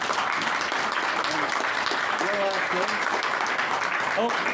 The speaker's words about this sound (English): I think then if you could give the panel a big round of applause.